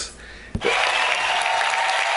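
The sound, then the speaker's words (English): A brief lull gives way to a sudden burst of audience applause for a group of young kids who came all the way from the Bahamas. The applause swells and holds steady, a dense wash of many hands clapping loud, with no talk over it. “They need a lot of applause.”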